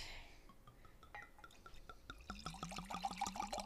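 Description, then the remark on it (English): Rosé wine from Chateau de Pampelonne glugs into a glass in a quick run of bubbly pulses, the tone rising as the glass fills; fairly loud, preceded by a few soft drips, with no one speaking. “That's a loud pour.”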